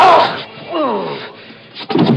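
A heavy, dull whack lands, followed by a low, falling groan from a voice, then another solid thud at the end. No words are spoken.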